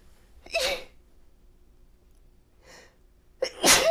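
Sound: sneeze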